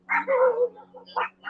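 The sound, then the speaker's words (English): A small dog yaps several times in quick, sharp bursts, one drawn out into a whiny bark, over a steady low engine-like hum, at a jet ski park. “Look, that little doggy jacking away.”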